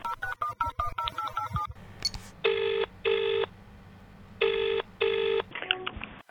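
Rapid electronic dial tones beep in a quick run, then a phone rings in two clear double bursts, loud, with no talking.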